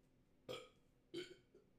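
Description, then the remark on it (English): Two short burps about half a second apart, each a brief loud croak with a rough, throaty buzz, followed by a faint trailing hiccup-like sound. “I got to burp.”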